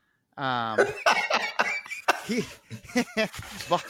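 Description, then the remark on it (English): A rough, phlegmy growl breaks into a series of loud, hacking, cough-like grunts, sputtering on in uneven bursts for several seconds. “And he has one line throughout the entire series. His one Mucinex cough.”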